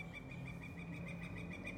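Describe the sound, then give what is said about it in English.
A yellow-shafted northern flicker, a woodpecker, gives a steady run of high, rapid repeated notes. It is faint over a low background hum, with no voices. “Listen to that beautiful sound of a northern flicker.”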